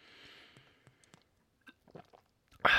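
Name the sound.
sipping a drink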